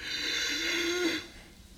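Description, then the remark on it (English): A person imitates heavy, panicked breathing with one loud, raspy breath lasting about a second, then it cuts to near quiet. “I start, my breathing gets heavy.”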